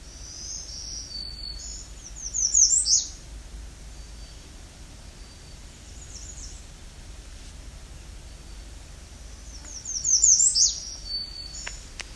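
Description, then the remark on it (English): An American redstart sings twice, about eight seconds apart, each song a quick series of high, thin notes ending in a sharp, piercing downslurred note, over a steady background hiss. “This warbler with the piercing call at the end is the American redstart.”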